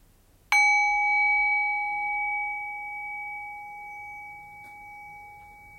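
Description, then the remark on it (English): A single bell struck once, its clear ringing tone lingering and slowly fading over several seconds into near silence, with no voices present. “And then once again, resting awareness on the decay of the bell, allowing the bell to gently guide our awareness into silence.”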